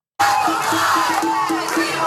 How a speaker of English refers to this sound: This is from New York. People shouting.